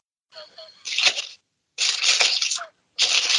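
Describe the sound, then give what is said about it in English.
Crisp paper rustling in three quick, fairly loud bursts as slips of paper with questions are stirred around inside a hat, with brief silences between each shuffle. “It's just the rustling of the paper.”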